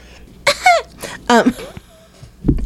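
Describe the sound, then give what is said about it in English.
Two harsh, voiced coughing bursts from inhaling too quickly, about a second apart, each loud and breathy with a rough, falling tone, followed by a short, duller low sound near the end. “I inhaled too quickly and I coughed.”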